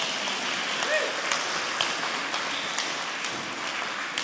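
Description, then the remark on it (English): A crowd applauding steadily, a dense wash of many hands clapping at once, fairly loud and sustained throughout with a few sharper claps standing out from the roar. “All these people will clap them all.”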